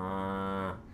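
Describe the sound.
A voice imitates the low rumble of cows heard in the dark: one sustained, low, droning moo held steady for most of a second before breaking off, loud.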